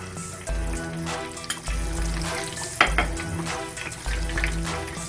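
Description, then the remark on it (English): Steady, crackling sizzle of catfish shallow frying in a pan, continuous, with occasional sharper pops and a low rhythmic hum underneath. “Now I'm shallow frying, I'm not deep frying, of course.”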